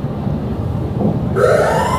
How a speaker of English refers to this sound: Where is the fucking air horn on it's this? It's called air horn.